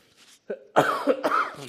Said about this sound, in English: It's the problem of this microphone. It follows you when you try to cough.